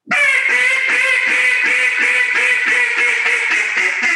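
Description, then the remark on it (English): A loud, rapid series of raspy quacks blown on a loudmouth-model duck call, about ten evenly spaced notes in a steady driving rhythm with no talking. “Here's a loudmouth right here, breaking ducks.”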